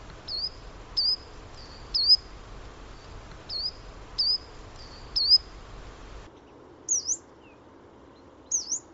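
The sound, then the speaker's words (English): A coal tit gives a run of short, thin, high-pitched calls at a steady pace over a soft background hiss, then a yellow-browed warbler's two sharper high calls follow. “So first you'll hear coltit, and then you'll hear yellow-browed warbler.”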